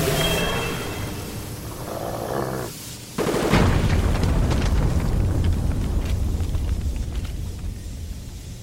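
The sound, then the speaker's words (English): A low rumbling drone gives way to a sudden loud burst as a pressure tank is shot and bursts, then a steady, roaring hiss of escaping steam fills the room and stays strong until the end. “After I shot the tank, it filled the room with steam, and I was able to move off the platform, down below everything, into the maze of pipes.”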